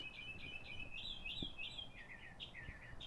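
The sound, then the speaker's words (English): Two birds mating chirp continuously in quick, high, repeating notes, one call overlapping another, with a low background rumble underneath and no voices. “Bro, y'all hear those birds, bro?”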